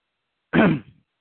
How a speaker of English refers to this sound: I don't know what's going on. Something's choking me up here. I apologize. I don't want to cough in the phone here.